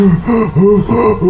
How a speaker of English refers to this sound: just gasses himself out and winds himself and just kind of sits there breathing.